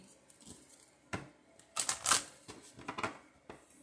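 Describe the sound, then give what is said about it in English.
A deck of playing cards being shuffled, a quick riffle of crisp flicking and snapping in a few bursts, with soft taps between them and no talking. “It's the shuffle for me.”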